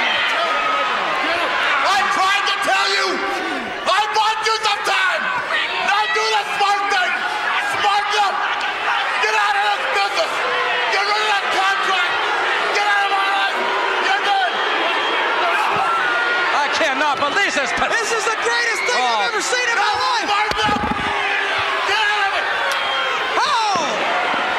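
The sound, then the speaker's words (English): A sharp open-hand slap cracks out over a loud, roaring arena crowd as Ric Flair slaps Sting, whose arms are held back across the ropes by the Andersons, with more smacking impacts scattered through the constant dense cheering and chatter. “The last thing you heard was a slap”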